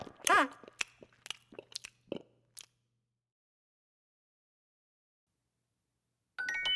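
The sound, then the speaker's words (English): A burst of crunchy chewing and munching noises, several sharp bites in quick succession, loud, followed by silence and then a brief tonal chime at the end. “When I drive it to Arizona, I can hear the engine chew.”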